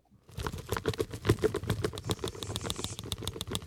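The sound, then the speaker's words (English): Folded paper slips bearing names rattle and tumble inside a little plastic jug, shaken steadily for several seconds to draw a winner, in a busy, continuous patter of dry clicks and rustles without any talking. “I have all those names on pieces of paper in a little plastic jug. I'm going to shake it. You will hear that.”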